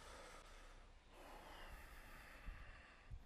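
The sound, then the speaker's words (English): Steady, raspy ujjayi breath drawn through a constricted throat during yoga practice in downward dog pose, a soft continuous hiss with gentle swells and a couple of faint low puffs, quiet, with no talking. “A deep ujjayi breathing. The hallmark is it has sound.”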